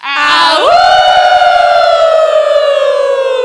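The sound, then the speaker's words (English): A group of people at a live show, howling together as a team, imitates wolves in one loud, sustained howl that swoops upward in pitch, then holds and slowly sags for several seconds, rich and siren-like. “What's going to happen is that we're going to wolf howl out all together as a team.”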